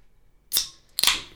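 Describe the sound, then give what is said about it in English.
A can of Truly hard seltzer being opened: two sharp, bright cracks about half a second apart, each trailing into a short hissing fizz, with no talking. “We're gonna open up this Truly. Open it up, babe.”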